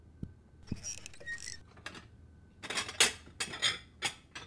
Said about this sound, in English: Don't get too excited. I'm just pouring cereal.